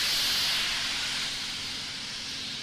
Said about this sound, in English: The ambient noises at the pad. It's the best.